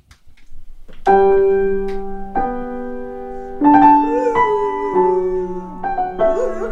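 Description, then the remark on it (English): The first half of a slow, stately classical aria, the opening piece of a set of variations, is played, with sustained notes and chords ringing out one after another at an unhurried pace. No one speaks. “So I'll do the opening, which is the aria to the Goldberg Variations, just the first half of it, which is kind of a slow, beautiful, stately piece”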